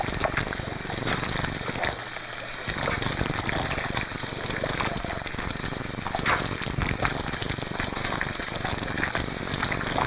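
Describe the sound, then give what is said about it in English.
A steady, dense patter of onion, garlic, poppy and sesame seeds being sprinkled and scattering onto boiled water bagels, with a continuous crackly hiss and busy kitchen noise underneath for the whole stretch. “Yeah, I'm putting the onion seeds on, some garlic. Putting some poppy, some sesame.”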